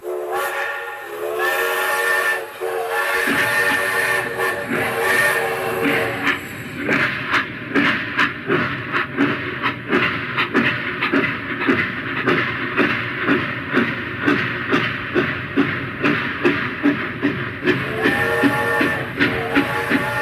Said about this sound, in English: The train stopped and they all got on board. All aboard! The train is leaving the station.